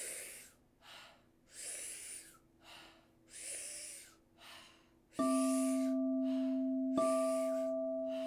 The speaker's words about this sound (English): Powerful inhale, soft exhale, bringing in an abundance of prana, an abundance of breath, and just letting a third of it go.